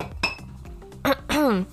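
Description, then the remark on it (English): Someone drinks water from a glass: a bright glassy clink, a few soft handling sounds and a sip, then a short voiced 'ahh' that slides downward in pitch. “I'm drinking my water.”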